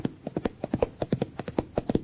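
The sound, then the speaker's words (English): A horse runs a timed half mile, its hooves clip-clopping in a quick, steady rhythm, a run of about fifteen sharp hollow knocks, fairly loud, with no voices over them. “Here he comes, Mr. Rogers, sir.”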